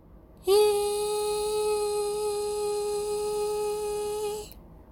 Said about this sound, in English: These guys are doing their fucking bells. Doing the bell ritual. Ding! It sounds like a fire alarm.